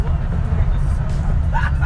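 Steady, fairly loud low rumble of a moving bus from inside, continuous throughout, with faint background chatter and a brief higher-pitched squeal near the end.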